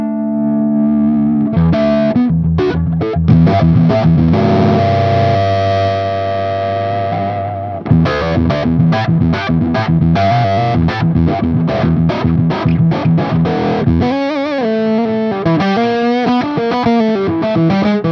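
Heavily distorted electric guitar played through a boost, with the boost turned down and the volume up, plays loud, choppy riffs with sustained notes and rhythmic chugging, thick and saturated, with no talking over it.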